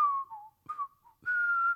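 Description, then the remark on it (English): A person whistles a short melodic phrase, three clear pitched notes with a long held final tone, fairly loud with no talking. “What are you whistling?”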